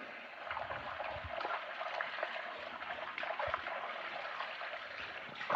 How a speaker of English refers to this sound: I'm going to rinse this bowl out here that we had our olive oil in.